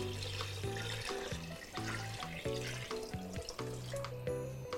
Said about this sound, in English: Then we're gonna drop in 14 cups of water.